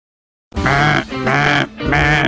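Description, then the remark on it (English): A cheap duck call blown in three loud, nasal, buzzy honks, each roughly half a second with short gaps, sounding almost like a bleating goat. No one speaks. “Well, that was my flashing me, or a really cheap duck call that I need to return anyway.”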